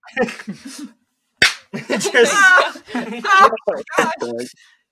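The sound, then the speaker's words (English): One loud, sharp slap cracks out after a brief pause. Excited talking and laughing-tinged voices come before and after it. “A perfect slap.”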